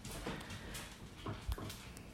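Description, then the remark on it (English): A dog scampers around, its paws making light, irregular taps and soft thumps on a hard floor against a faint background hiss. No one speaks. “I mean, I can't stand these dogs anymore.”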